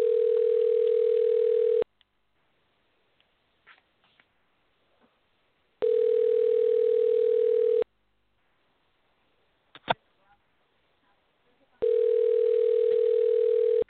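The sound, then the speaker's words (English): A phone line rings on an outgoing call: three long, steady two-second ringback tones separated by quiet gaps of about four seconds, clear and fairly loud, with faint small noises in between. “Let me make this phone call real quick.”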